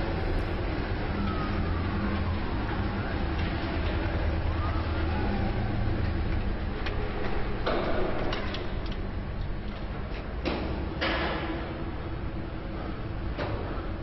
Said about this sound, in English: they drove it in, you already had crowds of people like already outside of the building. So you can hear people in the background like cheering and jeering and yelling and stuff like that.